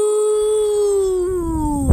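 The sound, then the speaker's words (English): A child's voice from Fort Worth, Texas, imitates a cow's moo: one long steady tone that lasts about two seconds and slowly slides lower in pitch, ending with a short breathy burst. “Oh, that was an excellent moo.”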